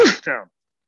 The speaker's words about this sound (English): Bless you.